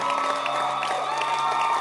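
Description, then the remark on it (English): An audience claps and cheers for its Basanta leaders and constituency overseers in a dense, steady wash of applause, with scattered whoops and shouts rising above it at a constant loud level. “Let's clap our hands for all our Basanta leaders.”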